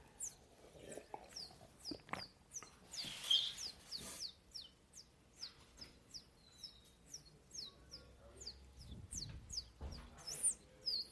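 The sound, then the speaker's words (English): A bird chirps over and over in quick, steady succession, each note a short, high, downward tweet. The calls are fairly soft, with faint low rumbling noise in the background. “Is there a bird in here?”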